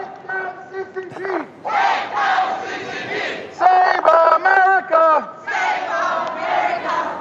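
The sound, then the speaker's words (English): A loud crowd chants the slogans "Take down the CCP!" and "Save America!" in rhythmic unison, repeating them several times with bursts of cheering and shouting between chants. “This crowd is going to get loud all week long.”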